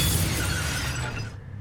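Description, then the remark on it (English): A car window on the Whitestone Expressway is shattered by a gunshot fired from a green car alongside: a loud crash of shattering glass, a dense burst of breaking and tinkling fragments that holds for over a second before cutting off sharply. No one speaks. “they're driving on the Whitestone Expressway, which is just before the Whitestone Bridge, and a green car pulls up alongside them with a gun, fires a round into their window.”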